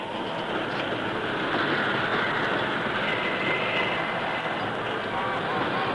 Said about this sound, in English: The work train had run through the short canyon and out onto the curving track beyond before the lever responded.